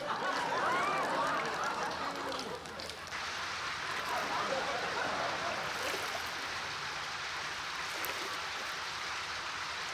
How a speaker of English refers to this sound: Actually, it's gushing water. The river is flowing out of the TV, and now I'm surrounded I'm surrounded by an ocean.